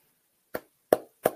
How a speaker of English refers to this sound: Every time I hear that clap, I just want to take a metal spike golf shoe to somebody. Because it's a gator mouth clap.